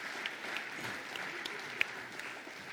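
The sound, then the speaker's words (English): Steady applause from a crowd, a dense wash of many hands clapping at once with a few sharper individual claps standing out, sustained at moderate volume without any voices. “Could you guys give them a big round of applause?”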